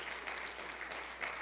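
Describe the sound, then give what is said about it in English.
Steady applause from an audience giving the Lord a hand clap of praise during a sermon, a dense wash of many hands clapping at once, continuous and fairly loud for the short stretch with no voices speaking. “If you believe it, give the Lord a hand clap of praise.”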